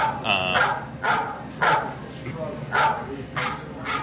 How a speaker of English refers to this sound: Get that dog out of here! Trying to do a podcast here.